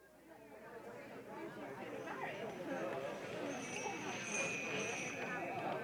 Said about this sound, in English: January 1829. A crowd gathers outside the Parliament buildings at the foot of York Street as horse-drawn sleighs deliver the legislators for the opening of Parliament.